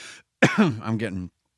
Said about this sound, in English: Excuse me, that was the cough button.